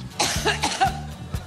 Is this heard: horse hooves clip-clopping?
no